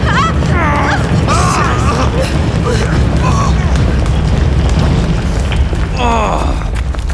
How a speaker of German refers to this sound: Das Feuer hat schon die Munitionskammer erreicht! Nicht stehen bleiben! Da explodieren schon die Handgranaten!